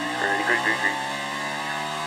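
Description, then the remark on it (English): A race car engine heard from onboard the number 4 car as it comes to the green flag, a loud, steady high-pitched drone with brief flickers in pitch early on as it shifts through the gears. “Now they're going through the gears.”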